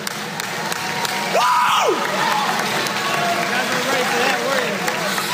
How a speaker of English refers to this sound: The best part of that is sort of the uncomfortable applause as people are like, oh my God, he's going crazy. Like, should we do something? Should we applaud too? What's happening? Like, yeah, those are reporters.